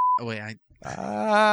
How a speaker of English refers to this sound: Right, yeah. Gonna have to beep that one.